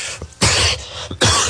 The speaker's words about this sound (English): Excuse me, folks. I apologize. I hate when people cough.